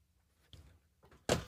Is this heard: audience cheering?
no